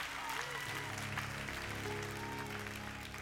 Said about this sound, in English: Come on, if that had been your house, you'd have clapped a little bit better than that.